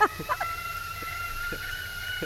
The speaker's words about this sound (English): They could turn it off as soon as they hear that fucking sound. we should start that as the intro next time. This fucking kettle like going off.